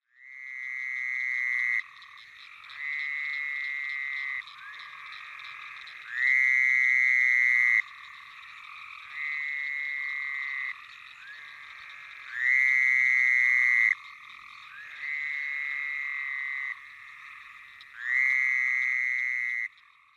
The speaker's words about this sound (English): And the sheep-like bleat of the fowler's toad.